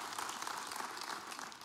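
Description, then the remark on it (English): A dense round of applause from a church audience, steady and sustained with many overlapping claps blending into a continuous wash of sound. “Can we all here give them another huge round of applause?”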